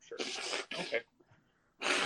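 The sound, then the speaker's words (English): A person with allergies blows their nose in three loud, breathy honking bursts: two back to back, then a brief pause before a third, with no talking. “And I apologize for blowing my nose. My allergies have been acting a fool.”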